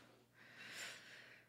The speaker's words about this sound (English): I just hear a lot of like coughing. She's just coughing up a storm today.